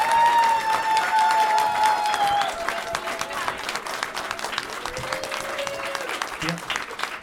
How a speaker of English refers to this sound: I just wanted to give a real rousing applause